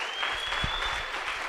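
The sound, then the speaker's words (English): A crowd claps for the King of Kings, a dense wash of many hands at an even, moderate loudness throughout, with a faint high tone running underneath and no voices standing out. “Please, if you can, clap your hands for the King of Kings.”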